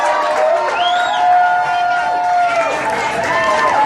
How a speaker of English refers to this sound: This man. Give him a round of applause. I want to hear it, guys. Show this man the love. Woo!